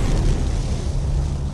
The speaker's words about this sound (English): The terrifying noise continued. He heard soft, thumping sounds, as if heavy objects were burying themselves in the forest earth around him.